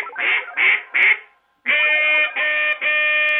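A duck quacks loudly: three short, raspy quacks in quick succession, a brief pause, then three longer, drawn-out nasal quacks. No one speaks.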